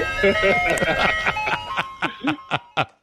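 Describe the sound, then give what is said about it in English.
A tinny Good Humor ice cream truck jingle rings out with steady, sustained tones for about two seconds, then fades as short, choppy bursts of voice or laughter take over. “I won't go in the back of the truck, I swear, Mom. I just want ice cream.”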